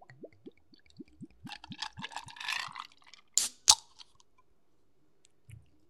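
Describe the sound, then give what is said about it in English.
American Honey (Wild Turkey) liquor glugs out of a fresh bottle into a glass in a quick run of rising, bubbly gurgles, then two sharp knocks as the bottle or glass is set down. Fairly quiet, with no talking. “Pour it up.”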